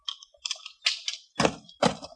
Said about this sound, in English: Toss your guns on the ground, both of you.